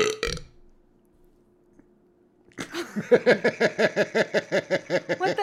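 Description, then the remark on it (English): A brief rustle, a short silence, then a long, loud burp that croaks on for nearly three seconds in a rapid, rattling pulse. “I had to burp.”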